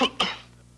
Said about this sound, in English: When you've got a cough from a cold, you can't suppress it yourself. You need a strong cough medicine. Vicks Formula 44. Formula 44 can help suppress the hacking cough you can't suppress.